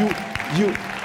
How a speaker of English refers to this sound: Those of you who are here for the first time, you are just the best. You are just the best. Please, let's clap for them.